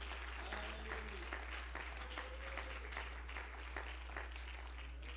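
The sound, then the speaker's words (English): A crowd claps their hands unto God continuously, a dense, steady, reverberant patter of many hands with a faint low hum underneath and no clear speech. “Can you clap your hands unto God?”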